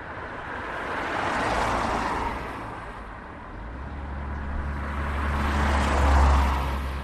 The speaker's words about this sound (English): Cars and trucks rumble along the road that links Cavan with Fermanagh. If they're travelling south to Cavan, they'll shortly arrive in Belturbet. But if they're going north to Fermanagh, in a few miles they'll come to the busy village of Derry Lynn.